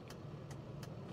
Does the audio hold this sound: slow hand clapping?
no